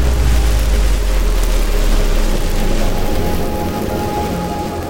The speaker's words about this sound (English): Huge explosion. And what happens in this explosion is that hydrogen and helium gas that was in the star, these gases sort of combine to form the heavier elements, all the way up to carbon, oxygen, nitrogen, iron.